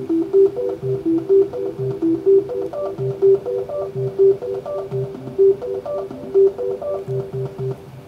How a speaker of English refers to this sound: And what I'm using it for in this case is to set some different color strips of LEDs on the Trellis M4 and play back different musical tones when I press the buttons. So you'll hear.